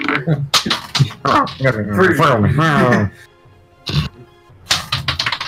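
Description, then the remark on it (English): Dice clatter onto a hard floor with a couple of sharp knocks following a stretch of voices, then a brief rattle as they settle. “Okay, and dropping my dice in the floor.”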